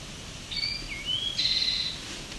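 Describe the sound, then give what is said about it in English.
A bird sings a short phrase of thin, high whistled notes, a few sliding tones followed by a longer bright trill, moderately faint against a soft outdoor hiss. “I don't know if this is the same bird as from earlier.”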